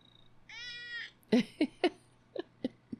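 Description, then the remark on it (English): A cat lets out a drawn-out meow, followed by a string of short, chirpy cat sounds in uneven rhythm, clear with no one talking. “See? Cats and people can live in harmony.”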